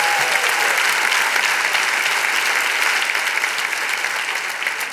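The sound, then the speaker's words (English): An audience applauds and cheers steadily, dense clapping forming a loud, continuous wash of noise for several seconds, fading only slightly toward the end. “Now you can cheer.”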